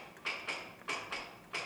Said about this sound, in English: We have police whistles, horse hooves.